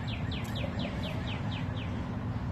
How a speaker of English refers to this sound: This goddamn bird.